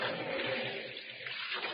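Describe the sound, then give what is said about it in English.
Water rushes and splashes steadily at the water's edge, a fairly loud, continuous wash with no voices, like water moving along a shoreline. “One day, Mother Ceres put on the wreath of poppies she always wore, took Proserpina by the hand, and went down to the water's edge.”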